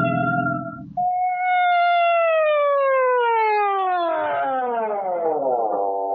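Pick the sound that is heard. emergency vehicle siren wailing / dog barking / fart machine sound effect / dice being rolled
emergency vehicle siren wailing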